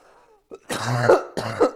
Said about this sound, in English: I was like getting rocked there in the beginning, I think it was just like loosening up some shit in my chest. Now that I talked about coughing, I'm gonna do it again.